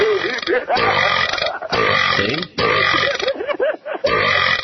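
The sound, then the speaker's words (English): A string of long, loud, guttural burps follows one after another, with brief pauses between them and a croaky, voiced rasp. “What's so funny about burping anyway?”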